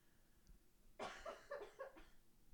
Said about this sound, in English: Sorry, I coughed.